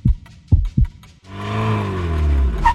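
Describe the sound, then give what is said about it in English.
A few deep, heavy heartbeat thumps pulse, loud and low, before the steady droning hum of a car engine, an Amazon delivery car pulling up, takes over for the rest of the sound. “In fact, you can probably hear my heart thumping with anticipation.”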